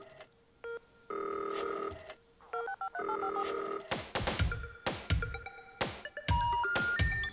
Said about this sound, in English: We've got a phone call next. Stand by.